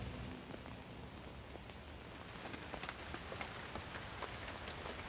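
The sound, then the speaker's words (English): Steady rain pours down in a dense, even hiss, with individual drops pattering on a hard surface throughout. It is fairly quiet and continuous, with no voices. “Why would anyone live on the rainy side of an island?”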